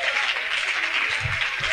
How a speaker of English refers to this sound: Come on and clap your hands and help me praise.